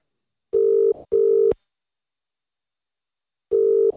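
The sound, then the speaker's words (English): An outgoing phone call to the caller's mum and dad ringing on the line: a steady electronic double-ring tone, two short bursts, a pause of about two seconds, then the next ring beginning. Clear and fairly loud, with no voices. “would you mind putting in my mum's number there? Mum and Dad. Calling now.”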